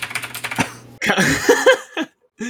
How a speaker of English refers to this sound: You got to get a mechanical keyboard so you can do the bit like I do.